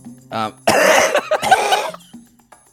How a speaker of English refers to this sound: Then I get comments saying that, like, how disgusting and off-putting coughing is on this podcast. Like, I think every time I end up in a laughing fit, it turns into a coughing fit. Like, I've been smoking Winnie Reds since I was 12.